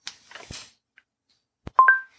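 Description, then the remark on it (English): After a few soft clicks and rustles, a phone keypad sounds a sharp click and then two quick, loud electronic beeps, the second slightly higher in pitch, as the user goes into the phone's contacts list. No one speaks. “I listen after a beep.”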